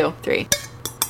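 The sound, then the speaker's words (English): Sharp little clicks of fingernails tapping a cup during a toast, three quick taps spaced about evenly apart, fairly crisp, with a faint clink in the background and no talking. “I'm tapping my cup with my fingernails.”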